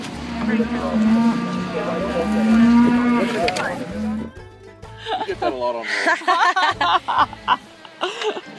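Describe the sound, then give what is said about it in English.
A cow on a ranch lets out one long, deep, drawn-out moo lasting several seconds, loud, then falls silent as people start laughing and chattering. “There were more people there, but I think that's just because they were getting fresh hamburgers that were made from a cow out the back.”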